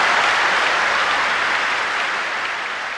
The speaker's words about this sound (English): To have this room of people cheer like that for an airport, there is something else going on here. Because for the people in the audience, this wasn't about some big construction project.